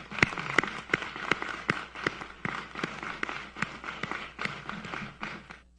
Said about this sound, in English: So a heartfelt thank you to the families for the support of the Illinois National Guard and for the support of your nation. Let's give the families a round of applause as well.